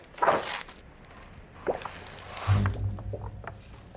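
Wallpaper peeling away in Barton's hotel room in the film Barton Fink, in a few slow, sticky tearing pulls, the last one carrying a low groaning creak beneath it; fairly quiet, with no voices.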